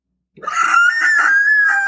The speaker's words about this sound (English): more terrifying screams sent Ruithwa running for Annie.